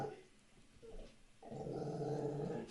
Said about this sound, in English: Here, look at him. Rufio. He's just laying there, growling Rufio. At me.